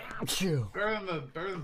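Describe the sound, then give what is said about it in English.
A single short, sharp sneeze bursts out, followed right away by a man speaking a few quick words. “Bless you.”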